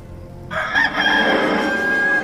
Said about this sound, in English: And at once, a rooster crowed.